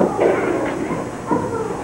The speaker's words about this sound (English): Here's some pages still rustling.